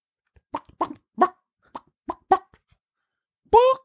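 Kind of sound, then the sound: vocal imitation, person imitating a chicken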